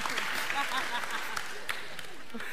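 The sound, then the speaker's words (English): A crowd breaks into a round of applause, many hands clapping in a dense, steady patter that holds for a couple of seconds, with a few voices mixed faintly underneath. “Round of applause.”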